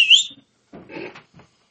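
A short, shrill whistle blast rings out loudly for a moment, followed by a few muffled rustling and knocking noises.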